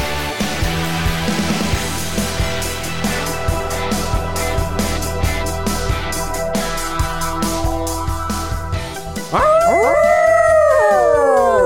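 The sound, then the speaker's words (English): A loud dog howl rises and falls in long wavering tones near the end, coming in after several seconds of steady background music that carries on beneath it. “And since Hex isn't here, howl noise.”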